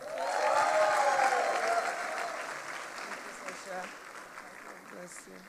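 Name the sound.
audience applause and clapping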